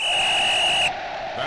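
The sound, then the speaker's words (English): A single shrill whistle blast holds one steady high pitch for just under a second, then cuts off abruptly, leaving faint background hiss. “It's the whistle that we're nearly out of time.”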